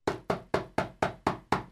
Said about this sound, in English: All right, you want to knock on the door, or I'll knock on the door? Well, it's your mission, so you knock on the door.